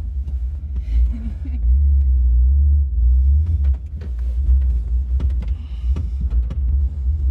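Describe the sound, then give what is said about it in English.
A pickup truck engine runs with a heavy, uneven low rumble that throbs steadily for several seconds, close by, with scattered clicks and faint voices in the background. “Well, my truck does this where it's, I think it needs new spark plugs or something.”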